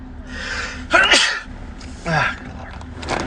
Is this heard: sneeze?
yes